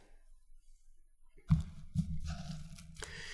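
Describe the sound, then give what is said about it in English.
After a quiet start, someone takes a drink of water as they start a message: a few soft gulps and swallows with low, muffled thumps and small clicks and rustles from handling the bottle or cup. No one speaks. “Once in a while, I need a drink of water when I start my message, as I discover.”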